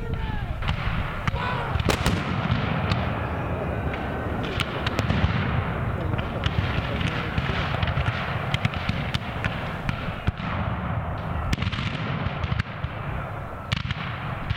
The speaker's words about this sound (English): The loud booming of cannon fire rips through the North Florida pine forest 15 miles east of Lake City as startled cavalry horses whinny.